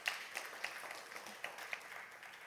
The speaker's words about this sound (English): That's where, if y'all can clap, you should clap over that. We should celebrate over that.